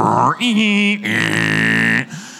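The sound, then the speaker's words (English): A voice imitates an early-internet dial-up modem connecting over a phone line: loud, buzzy, strained tones in two sustained bursts, the second harsher and higher-pitched, with no words spoken. “And it made horrible cat dying noises when you tried to connect.”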